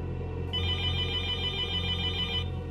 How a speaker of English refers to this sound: The monitor ignited in a splash of white light as a video call continuously rang. It read Dr. Altman.